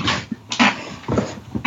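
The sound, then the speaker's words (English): A dog whimpers and whines in a few short, strained bursts with brief pauses between them as it is being moved, fairly loud and with no one talking. “I had to move my dog.”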